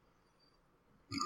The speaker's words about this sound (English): sorry, I had to burp there.